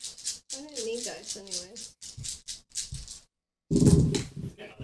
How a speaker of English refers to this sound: I rolled 8 dice this time with a -1 and got 3 hits.